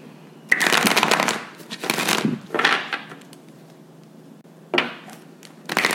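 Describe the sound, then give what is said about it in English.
Tarot cards being shuffled during a reading in several quick bursts, each a crisp riffling flutter, with short pauses between rounds and no talking. “So I'm going to shuffle them to get your energy.”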